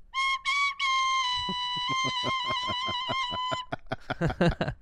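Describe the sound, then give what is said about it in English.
A recorder plays a few short, bright notes, then holds a steady tone while sharp tapping clicks sound alongside it, ending in a rapid burst of scattered higher notes; the recorder is played in a bunker. “That's how you can tell the difference between episodes that were recorded in the studio, where we have the train whistle, and then the bunker, where we have the recorder. The recorder. The recorder actually has multiple notes.”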